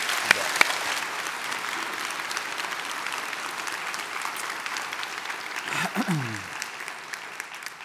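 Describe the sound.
A steady round of applause from a crowd, dense and even clapping for about eight seconds, with a brief cheer or voice rising through it near the end.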